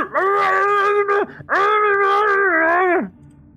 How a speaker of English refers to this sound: However, as the thing lurches, you sort of hear the screaming from upstairs.